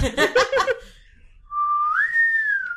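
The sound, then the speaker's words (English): A short burst of voice gives way to a person whistling, trying to imitate a TV show theme: a clear, steady tone that holds and then slides upward to a higher pitch, fairly loud. “Was that the whistle? Yeah, do the whistle.”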